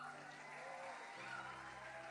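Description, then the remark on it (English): A large church audience claps for Jesus during a service, a dense, even wash of applause that holds at the same level throughout, with faint sustained tones humming underneath. “I thought you would clap.”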